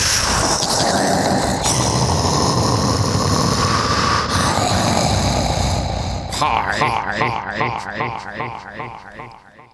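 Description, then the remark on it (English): A loud, gravelly roar like a big engine revving, then a run of rhythmic sputtering pulses that fade out. It sounds like a voice imitating the engine rather than a real truck. “It's not all monster trucks.”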